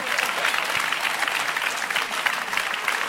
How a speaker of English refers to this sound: You see, they are clapping. Should I clap?